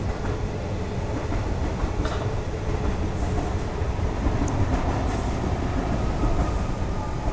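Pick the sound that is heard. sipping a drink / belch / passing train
passing train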